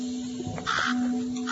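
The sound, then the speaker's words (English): A single harsh caw from a crow sitting in a tree rings out clear over a steady low hum, with no voices present. “Is your spirit in the crow sitting on the tree over there?”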